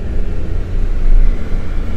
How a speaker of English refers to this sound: A moped.